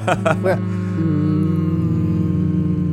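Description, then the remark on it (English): Several voices hum together in a steady, low, overlapping drone that holds for a few seconds, fairly loud, after a brief burst of vocal sounds at the start. “We should all hum to like end let's the show. Do it. Let's do it.”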